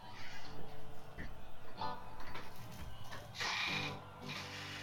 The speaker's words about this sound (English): I'm sorry if you keep hearing. That's my door. It just keeps creaking.